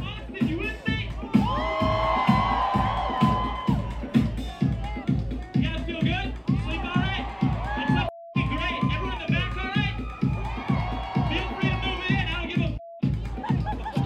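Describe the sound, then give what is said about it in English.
A concert crowd at a show by a laptop sampling artist playing mashups cheers and whoops over loud music with a steady, pounding beat, the crowd noise dense and continuous throughout, with two brief dropouts. “Completely had this crowd wired.”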